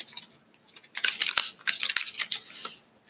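Crisp papery flutter of a deck of tarot cards being shuffled, a burst of quick riffling and slapping that rises around the middle, with no voices.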